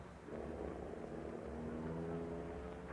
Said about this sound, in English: He's getting back in the car. He's driving away. Wait, don't move from here until he turns off this branch road.